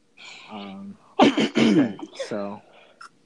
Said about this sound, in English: Double bless you.